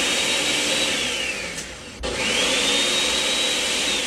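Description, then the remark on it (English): A blender making a smoothie roars steadily with a high whining tone. Midway the motor bogs down, cuts out for an instant, then spins back up to full, loud speed. No voices. “Sorry, it's my blender. I'm making a smoothie.”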